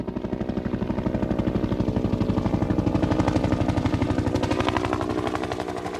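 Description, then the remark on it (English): A helicopter's rotor thumps in a steady, rapid rhythm over a low engine drone, loud and continuous throughout, with no voices. “Well, it got here by helicopter.”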